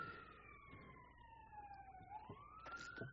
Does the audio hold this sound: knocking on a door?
no